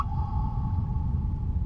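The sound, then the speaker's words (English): Song of a male humpback whale: one long, steady moaning tone held without a break, riding over a loud, churning low rumble of underwater noise. No one speaks. “Once it's over, the whale will start again, repeating the same song over and over.”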